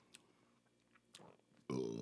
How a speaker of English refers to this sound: Anyway. I'm taking a sip.